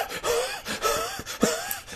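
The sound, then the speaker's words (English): Heavy, rapid breathing: about four loud, rhythmic breaths in two seconds, each with a voiced, gasping, slightly moaning edge, and no talking. “He can't hear us over his masturbation. I mean breathing.”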